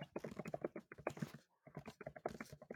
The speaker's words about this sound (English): I hear you typing.